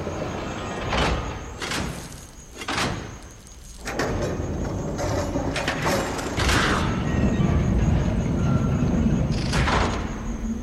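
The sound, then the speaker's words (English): Heavy golden doors grind open with a loud mechanical rumble, starting in a few harsh scraping bursts before settling into a sustained grinding roar that fills the scene. “A moment later, the golden doors opened with a grinding sound that filled the air.”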